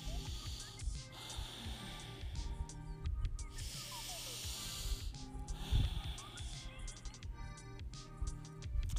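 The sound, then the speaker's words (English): Slow, deep breaths drawn in and pushed out through the nose, a soft airy hiss that rises and fades in long waves, with a faint tonal hum in the background and no talking. “And the breath would sound come through your nose and out of your nose.”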